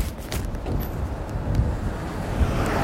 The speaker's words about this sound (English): I did that today, right? Garbage truck, about to cut over. Yo, I did that today. I almost got hit by a garbage truck.